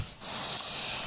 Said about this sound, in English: I just heard your dog snore or something. Oh, yeah. No, he's literally, he's falling over the armrest now. He's upset that I'm not petting him.